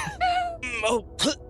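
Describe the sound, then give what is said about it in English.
A person makes retching, hacking noises as if coughing up a fur ball of wool: three strained, voiced heaves in quick succession, fairly loud, with no other speech. “You cough up a little bit of fur ball.”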